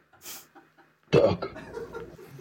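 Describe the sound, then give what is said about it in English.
A loud, nasal duck quack, a 'DJ Duck' live sound drop on a show, bursts in after a few faint short sounds, then trails off with some raspy chatter, like a short sound effect played on its own. “I think I've already heard my Duck, DJ Duck.”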